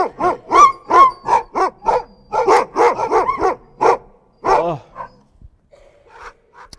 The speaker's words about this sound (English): And that is the problem with dogs, right there. So that is the problem with dogs, is that bark.